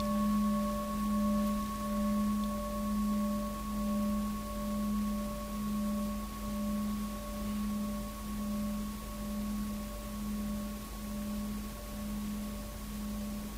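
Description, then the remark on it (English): A meditation bell rings with a sustained, humming tone that throbs in slow, even pulses, bright overtones held steady above it, with no voices throughout. “Just like if you take that sound, the bell.”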